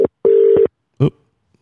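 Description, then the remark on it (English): A phone dials out: a short electronic tone, then a steady half-second beep, followed by a brief click-like blip, loud and clear with no talking. “Should we give her a buzz?”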